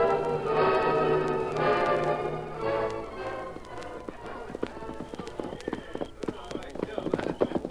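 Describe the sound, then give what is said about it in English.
Horses walk along a trail, their hooves clopping in an uneven, steady patter that grows clearer in the second half after an opening of sustained tonal sound. “Wide enough for the horses? We'd need them down below.”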